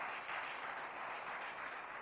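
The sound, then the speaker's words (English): A crowd gives a hand clap of praise, many hands blending into a dense, even wash of applause that holds at a constant level for the full two seconds, with no voices audible. “Oh, somebody give Him a hand clap of praise today.”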